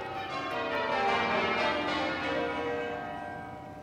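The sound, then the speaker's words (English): Twelve church bells in an English church tower, rung in change ringing, peal in a rich, overlapping descending round from the highest note to the lowest, struck tones blending into a sustained resonant wash that swells and then slowly fades. “And we end with, again, the bells ringing from the highest note to the lowest.”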